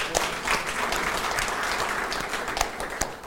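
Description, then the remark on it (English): An audience breaks into steady applause for the behind-the-scenes staff, a dense wash of many hands clapping at an even loudness for a few seconds, with occasional sharper individual claps standing out. “So just a round of applause for them also.”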